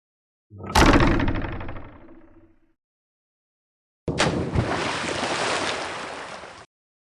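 A loud splash hits and fades over about two seconds, then after a short pause a steady rush of churning water runs for a couple of seconds before cutting off. No one speaks.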